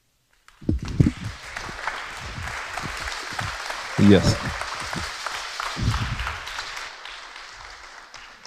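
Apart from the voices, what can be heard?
audience clapping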